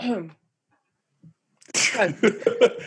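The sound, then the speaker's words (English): A brief voiced fragment, a pause, then a rough, raspy throat clearing that builds into several gravelly pulses, fairly loud and harsh. “Let me clear my throat.”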